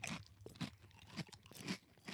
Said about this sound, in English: Now, obviously, because they're Ripple, they have a little more crunch. They're thicker, even in the thin part of the Ripple, than the Goods original, the red bag.